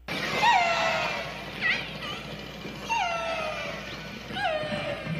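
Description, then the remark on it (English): Orca calls: about four shrill, squealing tones, each with a rich stack of harmonics that bend and glide downward, repeating every second or so over a steady low rumble and hiss. “Is that a humpback whale, an orca whale, or a dolphin? Oh, Lord. I'm going to go with, why not an orca whale? Well, you would be right”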